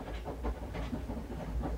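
A long train rolls steadily past, its deep rumble carrying a regular clickety-clack of wheels over rail joints, continuous with no voices.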